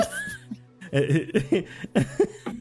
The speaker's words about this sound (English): … just slightly chokes on the smoke in her mouth and just like starts coughing really hard.